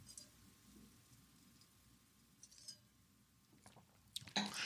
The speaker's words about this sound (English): And now that I taste it, it's a classy, solid Zin with tons of flavor. And I'm going to take another sip.